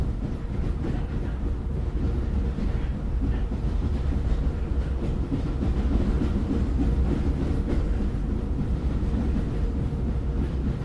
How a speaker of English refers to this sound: The sound of trains passing by can be disruptive in everyday life, but with the right mixing and filtering, some people view the sound of ambient train noise as a form of white noise.